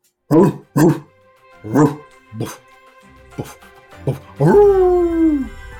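A dog barks, several short sharp woofs at uneven intervals, then lets out a longer drawn-out whining yowl that slides down in pitch at the end.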